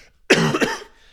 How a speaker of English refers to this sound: And sorry for the coughing.